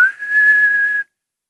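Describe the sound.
A person whistles one steady, clear note that holds for about a second and then stops abruptly, heard alone with no talking.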